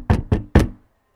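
Three firm knocks by a woman on a wooden door, loud and evenly spaced, followed by a quiet fading resonance and then silence.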